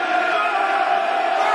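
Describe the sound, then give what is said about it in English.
A football crowd at a match rumbles with a steady, restless roar of many voices, a dense murmur with scattered shouts, holding at a constant loud level throughout, uneasy as the opposing team is given too much time and passes the ball at will. “Dear listeners, you can hear the unrest it's causing around me in the crowd.”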